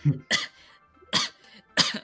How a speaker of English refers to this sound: … coughs a little bit.